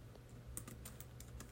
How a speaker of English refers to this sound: And excuse the typing that you hear in the background. I'm still working.